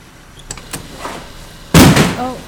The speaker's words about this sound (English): Environmental protection doors now closing. Remember, a door left open is an invitation for death.